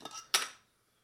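Food is tipped into the first of several bowls in two quick bursts: a short rattle, then a brighter clatter against the dish that fades within half a second, leaving silence. Moderately loud, no voices.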